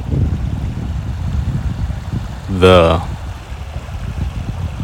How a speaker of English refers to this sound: It's a creek. It's next to water.